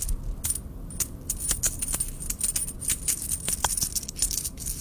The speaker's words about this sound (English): Sounds like a handful of coins.